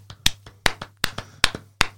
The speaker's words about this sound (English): Yeah, it was a bit disappointing. The golf clap. That's pretty funny. The guy's got 600 wickets. There's no one there. A golf clap, like the same as someone who gets a 50 on a syntho pitch in village cricket.